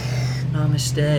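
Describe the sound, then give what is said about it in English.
A car passes outside, its engine a steady low drone with a faint hiss of tyres, holding at an even, moderate loudness through the whole short moment. “Thank you, car.”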